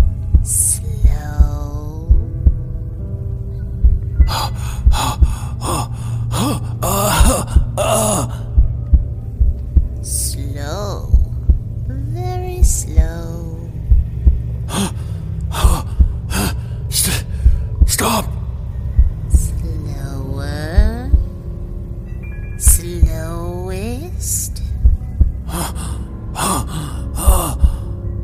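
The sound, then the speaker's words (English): A loud, deep heartbeat thuds in a steady rhythm over a low droning hum, with strained gasps and sighing breaths rising and falling between the beats. “Stop your heart. Hear it?”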